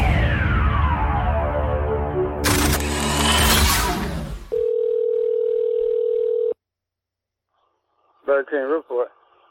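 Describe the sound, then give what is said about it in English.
A telephone line rings once with a steady two-second electronic tone after a burst of loud music, followed by a pause and then a brief voice answering. “The phone is ringing.”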